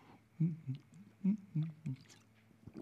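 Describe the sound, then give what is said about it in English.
Someone sips water, a series of five soft, low gulping swallows at an uneven rhythm, with no talking. “I will sip my water while you run up and grab a program so that you can look at the devos.”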